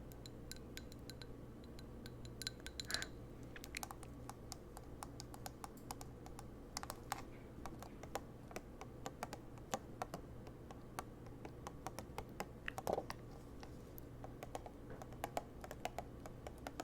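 Rapid, crisp taps of long fingernails on a Christmas candle's hard, slightly hollow surface, quiet, in irregular clicking bursts with a few sharper, brighter strikes over a low steady hum.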